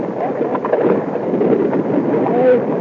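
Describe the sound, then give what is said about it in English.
A steady, rushing wash of ocean waves against a sailing ship's hull, with wind whistling through the rigging, near the Windward Islands about 200 miles off South America in the South Atlantic. Faint murmuring voices of the crew trimming sail drift beneath the constant roar. “And this is the way the waves and the water and the hull, the wind going through the rigging sounded.”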